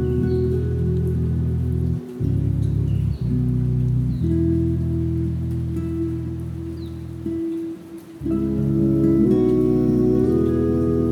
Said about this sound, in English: Be here in the rain and invite yourself to recognize each of the blessings.